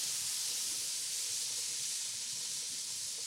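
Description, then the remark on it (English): Meat kebabs made with fat and grated onion sizzle steadily on a hot grill, a constant, bright hiss that fills the moment without a break. Moderately loud, with no voices. “Okay, I'm just going to get the sizzle.”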